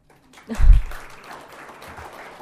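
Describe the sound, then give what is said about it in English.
An audience breaks into applause after a brief low thump, settling into a steady, dense patter of many hands clapping at moderate loudness. No one speaks over it. “You know, it's lovely that people, you know, clap”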